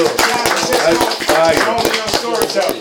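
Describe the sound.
An audience applauds with loud, dense, uneven clapping that holds steady for about three seconds, with some voices mixed into the applause.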